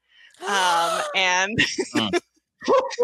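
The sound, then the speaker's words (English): A puppy whimpers with a long, high whine, then gives a few short, sharp yelps and barks. The sounds are fairly loud, with a brief pause before the last yelp. “Puppies get you banned.”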